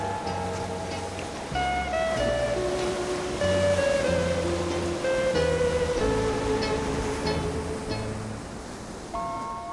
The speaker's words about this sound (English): enough to stand under the lighthouse, smell the salty air, hear the waves crashing on Steamer Lane below you